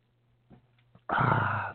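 A few faint soft sips or swallows of water in Wisconsin, then a sudden loud, breathy exhale lasting about half a second, like a satisfied gasp after a drink of water.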